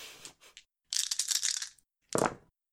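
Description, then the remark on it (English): Dice being rerolled: shaken and rattled in two noisy bursts, then tumbling out in a final louder clatter before stopping. No voices are heard. “So using my double jeopardy aspect, I want to reroll my dice.”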